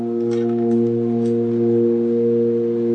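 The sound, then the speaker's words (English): A man buzzes and sings at the same time, a low, steady drone that imitates a tuba, holding one in-tune pitch with rich overtones for about three seconds without a break. “But his thing is super in tune. It sounds tuba, right?”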